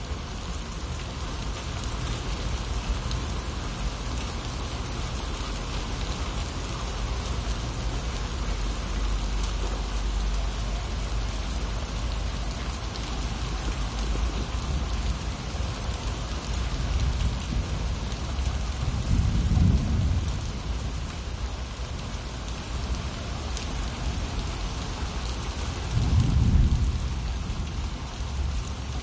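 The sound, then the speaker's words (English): Steady rainfall hisses evenly throughout, a dense, continuous wash of drops with no voices, while two low rumbles of thunder swell briefly near the end. “RAINY DAY!”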